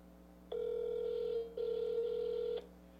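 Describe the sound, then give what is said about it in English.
A phone ringback tone sounds twice: two steady one-second electronic buzzes separated by a brief gap, clear and moderately loud over a faint background hum, with no one speaking. “It's ringing.”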